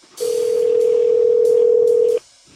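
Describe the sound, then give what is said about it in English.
A single steady electronic ringback tone plays for about two seconds over a phone line on a recorded outgoing call to the phone number on an ad, loud and even, then cuts off into near silence. No one speaks. “And at that time, I posed as an undercover customer and placed some recorded phone calls to the phone number on that particular ad.”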